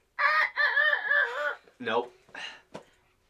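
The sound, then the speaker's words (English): A person imitates a rooster's crow with a long, strained, wavering vocal cry, followed by a few shorter squawks and a quick click, loud. “Yeah, it's not my best rooster.”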